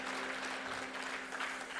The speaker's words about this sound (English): And thank you, worship team. You guys are awesome. How good is your worship team? I think we should give them a big round of applause.